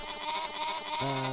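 sheep bleating sound effect

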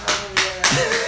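hand clapping

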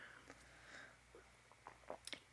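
sipping tea

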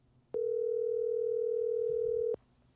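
phone call ringing tone

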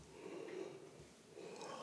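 yawn

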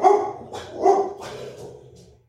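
dogs barking

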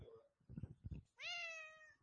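cat meowing

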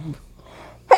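sneeze

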